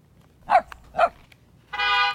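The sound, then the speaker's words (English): Toby, a pet therapy dog, barks twice in quick, eager succession, loud and sharp, then a steady car horn honks for about half a second. No one speaks. “Woof, says Toby.”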